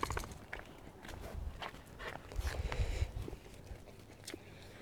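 Footsteps walking at a steady pace, each step a soft, muffled thud with a light scuff, moderately quiet, with no voices.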